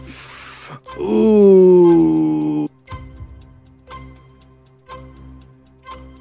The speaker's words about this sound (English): Time's ticking.